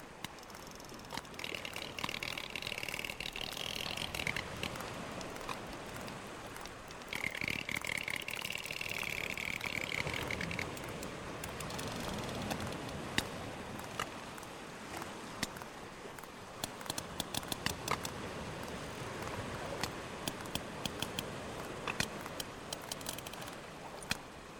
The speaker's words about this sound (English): A little sperm whale clicks for you to get you in the mood for Thoughtful Thursday.